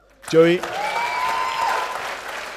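A crowd breaks into a steady round of applause after a brief shout, with a long whistle rising above the clapping before it starts to fade.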